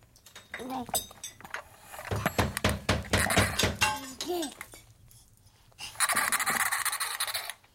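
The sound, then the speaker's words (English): Repeated smashing and breaking in a garage: loud bursts of crashing impacts with clinking glass, building into a dense flurry of hits, a brief lull, then a final noisy crash. “so I smashed and smashed and smashed.”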